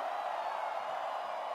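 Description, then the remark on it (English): A large festival crowd at the first Two is One show in Mexico screams together on a count of three for a family photo, one sustained, steady roar of many voices, dense and loud throughout without pauses or distinct words. “On the count of three, I want everyone here to scream.”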